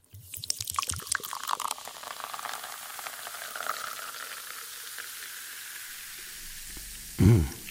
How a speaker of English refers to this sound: It's a fizzy drink being poured into a glass. A fizzy drink.